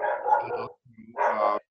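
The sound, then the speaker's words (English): A pet dog barks twice, loud, with a brief low growl or whine between the two harsh barks and no talking. “My dog is going nuts.”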